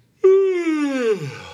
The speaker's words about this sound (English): You can cut that yawn out, right?